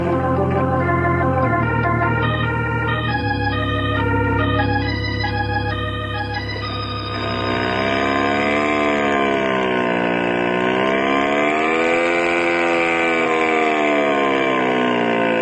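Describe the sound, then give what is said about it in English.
A loud 75-horsepower hot rod engine revs with no talking, its droning pitch first stepping up in jumps, then swelling and dipping in a steady rumbling wave. “Wow, that's some engine”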